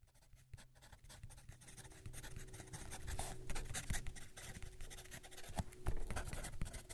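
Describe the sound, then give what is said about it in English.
A number 3 Blackfeet Indian pencil, made by the Blackfeet Nation in Montana from 1972 to 1992, scratches steadily across paper, dry, with short irregular strokes and light taps that grow a bit louder after the opening seconds; no one speaks. “Did you notice that this pencil sounds different? That's because I switched to a number 3 Blackfeet Indian pencil.”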